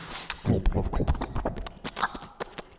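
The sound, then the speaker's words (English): Rhythmic hoofbeats clip-clop steadily as a horse moves at a brisk pace, with a voice talking over the sound in a game setting. “Get on my horse.”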